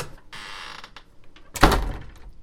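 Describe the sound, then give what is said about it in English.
A door slides or creaks briefly, then is slammed shut with a loud thud that rings out for a moment before fading. No one speaks. “And I think it's time for me to oil the door, for me to go back inside and slam the doors.”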